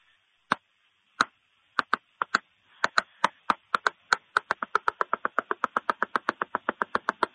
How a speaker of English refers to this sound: There's a secret knock. Oh, yeah. It's super easy to do, but you got to know it, though. It's this.